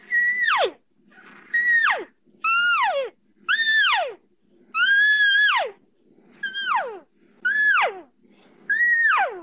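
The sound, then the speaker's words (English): Eight imitated lost-calf bawls, higher-pitched than a lost-cow call and made by closing the mouth a little more, in a steady series. Each is a loud, high-pitched bleat that slides sharply downward, separated by short pauses. No one speaks. “So you get that higher pitch for the lost calf, man.”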